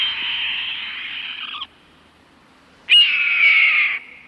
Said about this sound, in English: you happen to glance up to an overhead light post where a large hawk sits in plain view. It's brown, somewhat mottled. A small head and short tail make it appear football-shaped. It's a red-tailed hawk.